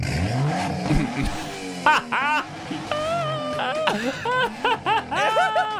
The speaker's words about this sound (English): So if you're listening, the guy who's blocking traffic, the guy in the car with his sports car backs right up to him, revs the engine, and the guy goes deaf right there in the road.